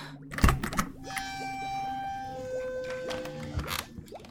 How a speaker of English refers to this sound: Very well. I am opening the door.